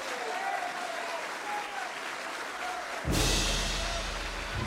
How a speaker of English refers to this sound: Well, let us hear from our minister, Minister Malcolm X. Let us bring him on with a round of applause.